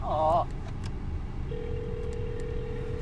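A phone call being placed: a short warbling electronic tone, then a steady, continuous ringing tone from the handset, all over a low, constant rumble like a car interior.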